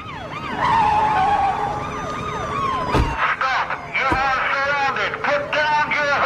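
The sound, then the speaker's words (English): A car skids and speeds away as its driver flees, amid wailing, sweeping siren tones, with sharp crashing bursts partway through; the scene is loud and busy, like a chase. “Hey, he's running away. He's driving off.”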